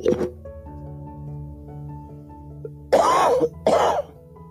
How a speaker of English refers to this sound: Or cough.